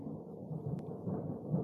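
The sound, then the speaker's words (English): A deep, rolling rumble of thunder from a storm just to the south fills the whole moment, steady and low-pitched with slight swells in loudness, and a single faint click partway through. No one speaks. “I haven't had my hands thunder? On one.”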